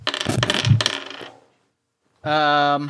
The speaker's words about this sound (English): And rolling, I'm going to roll 4 of my dice. Yep, that passes across, and no matches.